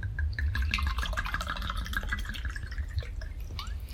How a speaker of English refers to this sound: Anyway, I'm going to pour more. Pour more wine.